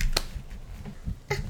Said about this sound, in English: Now my turn. Can you do a round of applause? Yay, we finished one game.